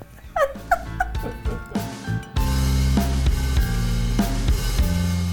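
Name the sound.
dog whimpering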